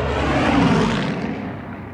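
A loud, sustained aircraft engine roar at full power as the plane goes into a dive, dense and droning, with a slight swell early on and the high end easing off as it continues.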